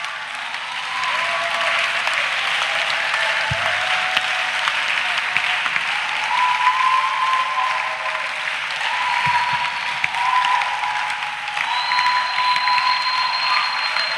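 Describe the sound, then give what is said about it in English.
An audience claps and shouts to celebrate the Lord, steady in a dense, continuous wash of applause, with shouts and whoops rising over it and a few brief thumps underneath; no one speaks clearly. “We are clapping and shouting to celebrate the Lord.”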